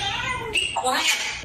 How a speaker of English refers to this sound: And they just go back and forth. The cat meows. The parrot says, shut up.